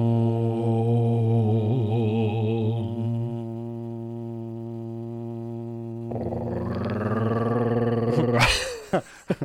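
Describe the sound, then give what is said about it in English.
A deep, sustained vocal Om growl chant, done as a ritual by vibrating the throat and epiglottis, with a rough, growling tone drones steadily for several seconds, then swells brighter and louder before breaking off abruptly at the end. “trying to start the podcast episode with a ritual. The Om growl.”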